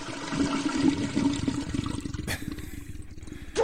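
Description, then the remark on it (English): A toilet flushes with a steady, rushing gush of water that churns loudly for several seconds before tapering into a thinner trickle and gurgle. “Let that log Wait clear for through.”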